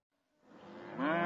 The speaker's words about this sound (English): Cow number L73NR. A cow.